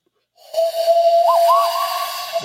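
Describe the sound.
Someone whistles a Western movie theme as a Clint Eastwood whistle, a long breathy held note with a couple of quick upward flourishes in the middle, over a steady airy hiss, lasting about two seconds.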